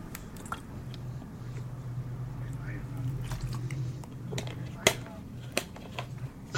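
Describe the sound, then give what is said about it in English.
Slurping as the last of a V8 Splash Tropical Blend juice drink is sucked up, with wet squishy gurgles and a few sharp clicks over a steady low hum, no one talking. “Drinking my V8 splash, almost gone.”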